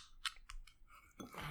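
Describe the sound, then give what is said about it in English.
A beer is cracked open: a few quick sharp clicks and scrapes, then a sudden broad fizzing hiss that carries on steadily to the end, with no talking. “So I'm going to crack this one open.”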